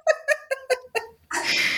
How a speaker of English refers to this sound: I hear a cat. Is that a hairball? We told you guys, it's the Animal Studies channel. There's going to be animal noise.